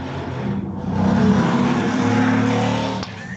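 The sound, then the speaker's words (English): A motorcycle ridden by actor Ewan Rian roars steadily, its loud, low engine hum swelling and holding before easing off as it passes, with no voices over it. “That was Ewan Rian going just past on his motorcycle, I believe.”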